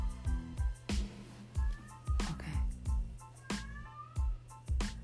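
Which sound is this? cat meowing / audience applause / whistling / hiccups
cat meowing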